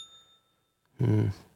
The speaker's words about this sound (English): Ding. Bell.